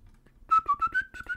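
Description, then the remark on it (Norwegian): A person whistles a brief tune of five or six quick notes, bright, with each note slightly bending in pitch. No talking accompanies it. “Da plystrer vi litt igjen.”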